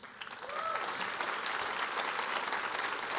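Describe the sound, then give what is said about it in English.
Steady audience applause, a dense wash of many hands clapping that swells quickly and holds at an even, fairly loud level, with a faint voice or whistle briefly rising at the start. “And again, lots of tears, lots of clapping, lots of tears, lots of clapping.”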